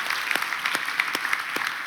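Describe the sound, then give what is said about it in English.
An audience applauds steadily, a dense wash of many hands clapping at an even level, with a few sharper individual claps standing out from the patter. “We clap for that.”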